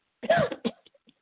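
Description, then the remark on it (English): A single harsh cough breaks out with a quick second hack right after it, followed by a few faint throaty traces and then silence. No one speaks. “Sorry, just try not to cough in your ear.”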